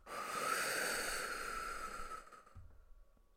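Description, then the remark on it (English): A long, deep breath pushed out in one steady, airy whoosh after a deep breath in is held at the top during a breathing exercise, fairly strong, tapering off after about two seconds into near silence. “Holding at the top. Let it go.”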